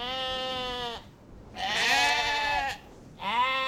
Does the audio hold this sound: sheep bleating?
yes